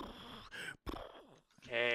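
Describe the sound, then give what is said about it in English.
Loud breaths blown straight into a microphone, a few rough noisy bursts with brief pauses between them, ending in a voiced groan-like exhale. “Breathing into the mic.”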